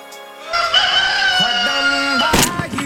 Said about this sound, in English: Don't shoot the rooster, Kenny! The thing won't shut up.